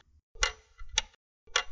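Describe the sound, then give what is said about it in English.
A clock strikes five o'clock, with three evenly spaced, ringing strokes heard, each with a bright metallic attack and a low, lingering hum, fairly loud with no voices. “I should have been here before the chiming of five, but I couldn't help taking a little jaunt through the place.”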